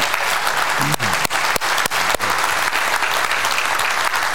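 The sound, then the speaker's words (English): A room full of people claps steadily, the applause dense and sustained throughout with a few sharper individual claps standing out near the start. “I think we should clap because there were some bold people here.”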